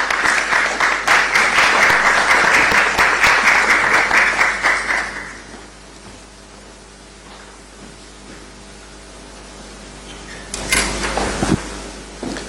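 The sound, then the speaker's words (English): Audience applause fills the room for about five seconds, dense and steady clapping welcoming the keynote speaker, UN Resident Coordinator for Ghana Charles Abani, that fades out, followed by quiet room tone with a brief shuffle or thump near the end. “So it's now time for our keynote speech, and we'd invite the United Nations Resident Coordinator, Ghana, Charles Abani, with a round of applause.”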